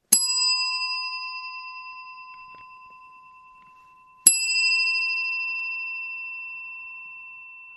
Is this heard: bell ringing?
yes